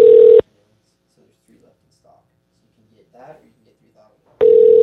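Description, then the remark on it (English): A phone call to someone who does not pick up rings out loudly over a speakerphone, with a harsh, buzzy ring tone at the start and again at the end, and faint voices murmuring in the quiet gap between. “He's not going to answer, dude.”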